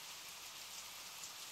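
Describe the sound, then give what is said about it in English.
Steady rain falls in a continuous, even hiss, moderately loud, with no voices or other sounds breaking through. “There's rain coming out of the sky.”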